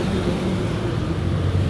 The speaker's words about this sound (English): I'm sorry, another bus. So, sorry.